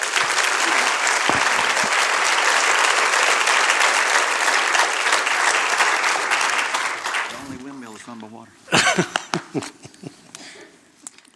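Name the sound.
audience applause welcoming speaker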